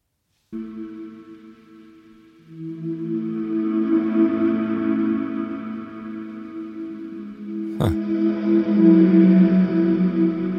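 A breathy vocoder pad, sent fully wet into a Space Echo while chords are played and the player blows into the mic, sustains chords with airy, whooshing texture and echo smear, swelling louder after a few seconds, with a sharp click near the end before the dense tone continues.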